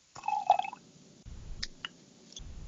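Red wine pours into a glass, a gurgling, trickling stream with a few drips and small bursts, rising and falling over a couple of seconds with no talking.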